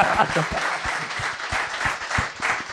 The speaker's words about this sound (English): Oh, round of applause. A little round of applause for that.